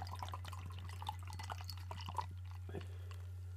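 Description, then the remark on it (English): Porter beer being poured right to the brim of a glass, heard as soft, irregular splashes, drips and fizzy crackles, fairly quiet over a steady low electrical hum, with no talking. “I got to be careful on the cheer because I poured that right to the brim.”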